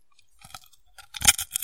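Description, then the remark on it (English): Crisp crunching of popcorn from a box being chewed by a woman, a series of irregular crackly bites that build louder toward the end, with no talking. “I'm looking at the waveform that's spiking all over the place as she crunched that popcorn.”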